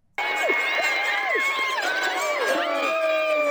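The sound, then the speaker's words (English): A crowd cheers and shouts at a dachshund race, many high-pitched voices overlapping in rising and falling whoops, bursting in abruptly and staying loud and steady for a few seconds. “Now, have you ever wondered what a wiener race sounds like? Wiener dog race, not a wiener race.”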